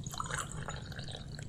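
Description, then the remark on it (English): A steady trickle of hot water from a freshly boiled kettle is slowly poured into a teapot holding tea, a continuous splashing and gurgling with no voices, lasting just over a second. “I put the tea inside the teapot, and then I slowly pour the hot water.”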